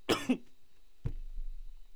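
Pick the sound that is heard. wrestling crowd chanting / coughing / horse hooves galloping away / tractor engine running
coughing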